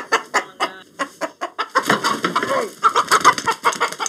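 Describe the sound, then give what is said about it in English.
A chicken being held in someone's hand to be photographed clucks in quick, choppy bursts, then breaks into a denser, agitated squawking with rustling noise, as if flapping and struggling. “I just started to let up, and he yanked it right out of my hand. Fact is, you can try to give chickens respect.”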